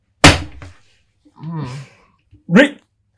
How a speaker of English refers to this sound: What's that? I was coughing.